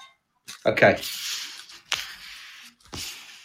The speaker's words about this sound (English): So if you'd like to put your coins... In the put the first coin in the machine. Okay, let me just put that in now.